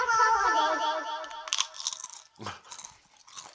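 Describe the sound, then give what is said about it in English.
Someone crunches crisps: four or five sharp, brittle bites come in an irregular rhythm after a sustained, tonal, voice-like sound fades out. “Crunching his crisps,”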